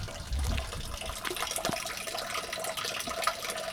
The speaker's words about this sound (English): And I make my way down to the park beside my old elementary school, listening to the sound of melting snow as the water runs into the drains.